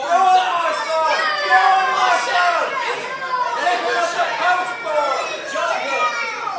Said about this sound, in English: So just a little bit of British and Australian cheering, please. 1, 2, 3, go.